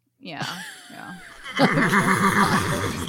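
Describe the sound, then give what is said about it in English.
A wavering, falling whinny like a horse neighing rings out, then gives way to louder, breathy laughter and voices for the rest of the moment. “Loki was the beautiful Loki horse. As a horse was the beautiful one. The hot horse.”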